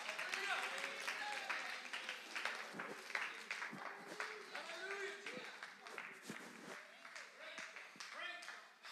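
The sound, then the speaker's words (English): An audience claps in a steady, sharp rhythm while many voices sing and call out together over it, the whole crowd sustained and loud. “Come on, clap your hands a little bit more.”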